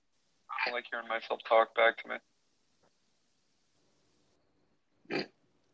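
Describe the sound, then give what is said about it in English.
A garbled, phone-quality burst of a speaker's own voice echoes back over a call for a couple of seconds, then silence, then one short clipped blip of sound. “I don't like hearing myself talk back to me.”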